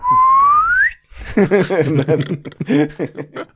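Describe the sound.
A person whistles a single smooth, rising birdsong-like note for about a second, imitating the birdsong sound effect from a Carry On film as a character does a little half pirouette and falls to the ground, followed by bursts of voiced chuckling laughter.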